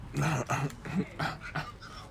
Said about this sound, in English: We ain't got no food for you. Dogs wanna eat, man.